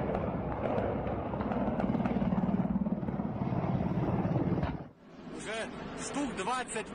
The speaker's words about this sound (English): There you go. Helicopters flying over people's homes.